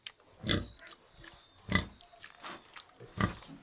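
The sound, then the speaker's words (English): Pigs oinking and grunting: three louder, throaty grunts spaced about a second apart, with softer snuffling and snorts filling the gaps between them. “Would raising your own pigs make you feel better about enjoying bacon?”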